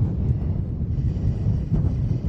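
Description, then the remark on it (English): Strong wind, the wind that caused a pileup of up to 80 vehicles on an interstate, buffets the microphone in a steady, loud low rumble that surges and dips unevenly throughout, with no voices, just a continuous roar of blustering noise. “Now, I can tell you that you can still clearly see and feel the wind that caused this accident.”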